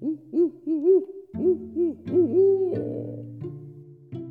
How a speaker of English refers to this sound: Barred owls are territorial and often quite vocal most any time of the year. You'll hear them doing their call, "Who cooks for you? Who cooks for you all?"